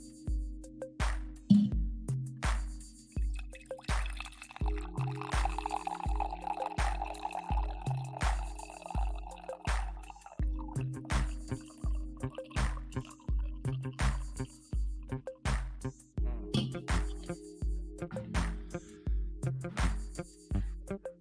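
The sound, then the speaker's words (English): Coffee pours into a cup in a steady stream, with a rhythmic dripping, gurgling pulse running underneath for about twenty seconds. No one speaks. “I haven't done a fucking coffee pour.”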